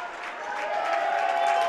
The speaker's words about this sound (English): She will check out of the game and get a standing ovation from the crowd. Well deserved.